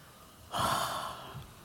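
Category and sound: human body sound, deep yawn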